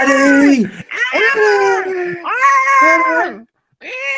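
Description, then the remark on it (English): A voice mimics the shrill ringside screaming of Eddie Alvarez's wife during the Alvarez–Poirier fight: loud, wailing cries in three long bursts that slide downward in pitch, then a short gap before another starts. “Yeah, she's like a banshee.”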